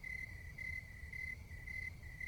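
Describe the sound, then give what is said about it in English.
Crickets chirp in a steady, high-pitched trill, pulsing in regular bursts over a low background hum, with no one speaking. “Do you hear the crickets? Because I do.”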